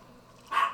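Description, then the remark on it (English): A single short bark from the speaker's dogs breaks a quiet background, sharp and fading quickly, with no talking around it. “My dogs.”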